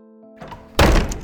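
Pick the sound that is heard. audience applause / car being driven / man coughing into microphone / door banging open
door banging open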